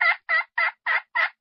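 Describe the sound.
A run of five evenly spaced yelps from a turkey hen pot call, imitating a hen, crisp and raspy, each note short and bright, with nothing else around.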